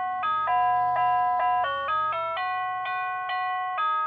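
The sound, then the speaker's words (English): A musical doorbell chimes out a bright, electronic melody, one clear note after another in a steady rhythm, loud with no talking over it. The doorbell plays the National Anthem at the north door and Dixie at the south door. “I like your doorbell.”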